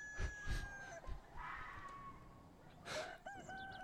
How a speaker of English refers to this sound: Yeah, that's like the ambience. Are the coyotes squealing? Yeah. All right. Oh, yeah, I hear that. I heard one.